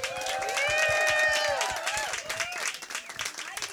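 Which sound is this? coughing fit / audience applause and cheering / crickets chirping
audience applause and cheering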